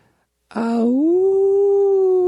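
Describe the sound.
A man in Minneapolis, Minnesota imitates a wolf howling at the full moon: a single sustained vocal tone that bursts in, dips, then rises and holds steady at a mid pitch, loud and unbroken to the end.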